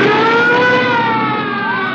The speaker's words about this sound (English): What's that? Fawzi, what's that? Police cars.